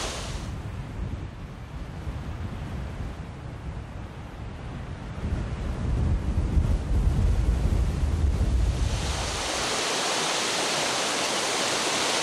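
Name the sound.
flowing stream water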